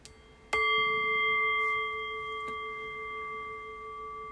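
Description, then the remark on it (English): A single meditation bell strike rings out with clear sustained tones at several pitches, the resonance holding steady and slowly fading over several seconds with no talking. “The invitation then is to rest awareness on the fading bell.”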